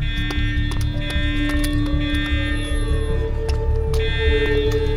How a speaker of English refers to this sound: That fucking alarm. No way the cops could have gotten here this fast.